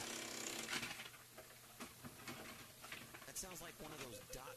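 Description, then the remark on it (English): A printer that is acting up, not an Epson, runs noisily, its mechanism whirring and clicking in uneven bursts and rattles. It sounds fairly loud, with some faint voice-like tones mixed underneath. “And in the meantime, my printer is acting up.”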